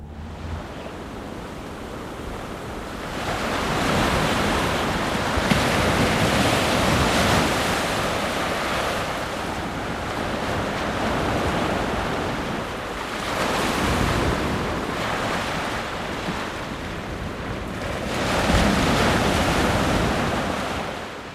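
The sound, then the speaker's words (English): Ocean waves break on a shore in steady surges, each crash swelling into a broad roar and then easing back, with continuous surf wash and some wind in between. No one speaks. “I find everything from laughter to crying to different sounds of the ocean in Australia, in India, in Southwest England.”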